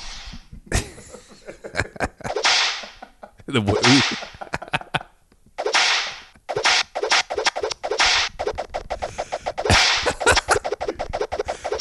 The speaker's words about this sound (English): Jesus, you're getting good with that whip.